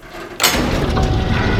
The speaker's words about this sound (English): Slide open the absurdly large and imposing iron door.